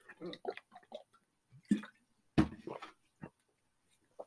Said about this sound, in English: Let me take a drink of water here.